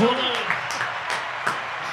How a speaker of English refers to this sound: Do we have an applause button over here? So. Do I dare hit one? I think it's yellow. Yellow.